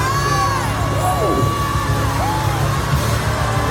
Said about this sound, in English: Now start shouting, he's healing me. Now. All right.